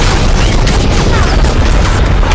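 Relentless machine-gun fire on a ship's bridge, a dense, loud roar of rapid overlapping shots and booming bursts that never lets up, filling the whole clip with harsh, chaotic noise.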